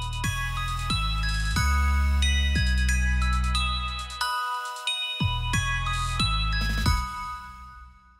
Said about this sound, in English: The next time I hear that chimey music ringing through my neighborhood, it'll sound like so much more than just ice cream.